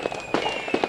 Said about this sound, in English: It's like a machine gun, right? All right. There you go. That's fireworks. It'll be added. I'll be added in the post-production.